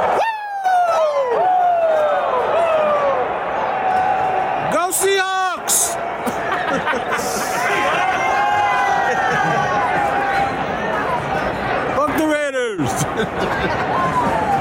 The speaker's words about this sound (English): Crowd is going crazy though right now.